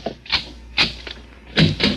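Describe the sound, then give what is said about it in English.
The other door up a hall opens: a handful of sharp clicks and wooden knocks from the latch and handle, ending in a couple of heavier thumps, with no one speaking. “Open the other door”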